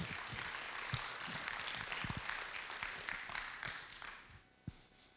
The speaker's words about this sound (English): Come on. I'll give Him a good round of applause.